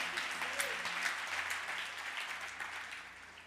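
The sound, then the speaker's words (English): A crowd applauds steadily, many hands clapping in a dense, continuous wash that holds fairly loud for several seconds, with a low hum running underneath and no voices rising above it. “Clap your hands, change family.”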